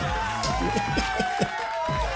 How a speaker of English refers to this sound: I can hear the crowd chanting.